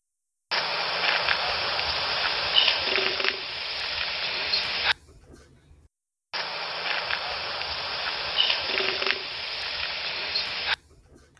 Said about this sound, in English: when they're in danger, they have this like coughing, deep sound too that comes from their throat. Hey, if we stand by, I'll play one really quick.